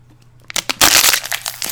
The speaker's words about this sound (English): That was me finishing off my water, my bottle of water. Thankfully, I knew I was going to go through it quickly, so I got 2.